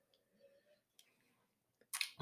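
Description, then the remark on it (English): Someone takes a small sip of tequila: quiet mouth and glass sounds, then a brief, louder slurping burst at the end, with no talking. “It's definitely one of the better smelling tequilas that I've ever, you know, tried. I'm going to take a sip here.”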